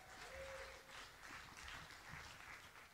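A crowd applauds steadily for about three seconds, a dense, even wash of many hands clapping at once, with a brief tonal whine near the start.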